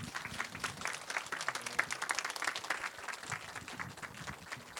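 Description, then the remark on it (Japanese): An audience claps steadily throughout, welcoming director François Ozon at the opening of the French Film Festival in Japan: a dense, even wash of many hands applauding at a moderate level with no voices standing out. “では皆様改めまして大きな拍手でお迎えください。”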